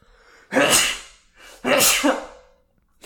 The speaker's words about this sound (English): I'm going to sneeze real quick.